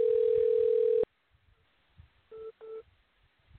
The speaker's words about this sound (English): Are you trying to call me? No, stand by. My phone is ringing right now.